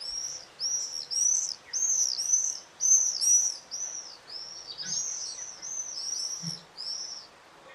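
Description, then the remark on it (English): A rapid series of shrill, high-pitched screaming calls from swifts, repeated in overlapping bursts across the whole stretch, fairly loud with no talking over them. “Swifts make a high-pitched screaming noise that once heard is never forgotten.”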